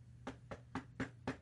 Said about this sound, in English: Someone's at the door. Hold on, let me check that. Who could this be around like Christmas time? I don't know. It's weird.